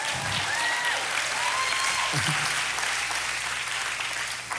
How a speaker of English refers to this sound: I'll take those 6 golf claps.